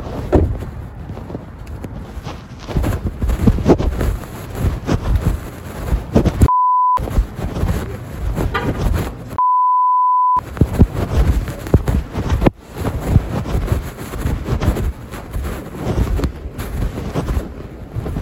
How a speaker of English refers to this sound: For our listeners, when you can hear beeps in this recording, it is to cover up the sound of voices and to protect people's identities.